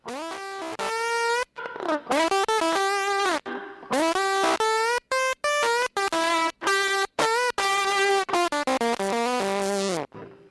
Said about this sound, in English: Now, I'm going to show you, I went like cuckoo a little bit and went way up with the distortion. This sounds like bees are attacking my house.